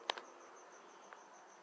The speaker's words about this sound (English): I love this cricket sound, but yeah, Vegas is actually nesting in these things, and people don't even know what insects crickets come from.